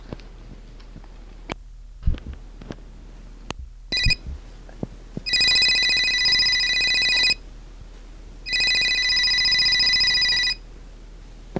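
A cell phone rings in two long, bright electronic bursts with a pause between them, loud, after a few scattered clicks and soft thumps. No one speaks.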